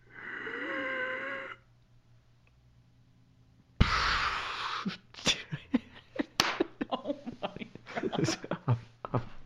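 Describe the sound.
A voice imitates the single drawn-out, rasping, labored breathing of a dying grandmother lying in bed, with a strained pitch. A short silence follows, then bursts of laughter and overlapping voices.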